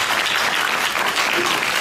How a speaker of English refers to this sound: Let's give God a hand clap of praise for the one who accepted.